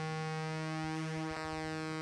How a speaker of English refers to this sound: And you're getting these really nice sort of like phasing animated sorts of sounds on this what's a static input, which is just the sawtooth.